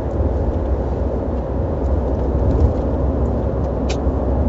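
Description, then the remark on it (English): A steady, low rumble of a car engine and road noise, as heard from inside a car being driven during a five-hour trip, continuous and even throughout with no voices. “I feel like there's something wrong with my car. It does not feel like it's running.”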